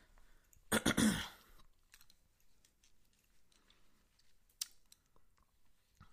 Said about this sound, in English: I have to, drink, half of my bottle of water because I'm just spitting on my freaking microphone and on my television screen.